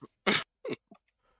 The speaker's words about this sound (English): I had a cough in the middle of the fucking story.